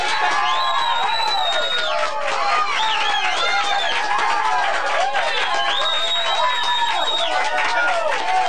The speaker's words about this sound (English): That's a problem. Too much cheering.